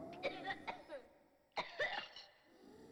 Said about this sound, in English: Tuberculosis is a sinister disease, a serious bacterial lung infection that spreads when an infected person coughs or sneezes. And since an extreme cough is one of the most telling symptoms, the disease can spread rapidly.